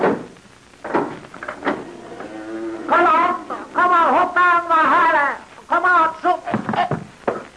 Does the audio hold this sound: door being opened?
yes